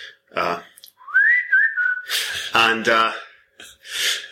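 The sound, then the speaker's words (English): A phone's whistle alert tone: a clear whistle that swoops upward, wavers, and holds steady for about a second, with breathy, noisy bursts before and after it. “It is extra embarrassing when it goes off in class.”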